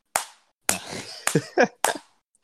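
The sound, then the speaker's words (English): A slow, steady hand clap: about five sharp, loud claps spaced roughly half a second apart, each ringing briefly before the next, with a short tonal sound between two of them. “Everyone, give a slow clap for Methy right now.”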